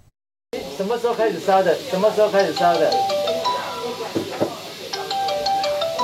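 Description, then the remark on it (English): Phones ring insistently at a clinic taking calls from COVID patients, melodic electronic ringtones overlapping one after another, with a steady beeping tone joining near the end over a busy, hissing background. “Before one call ends, another comes through.”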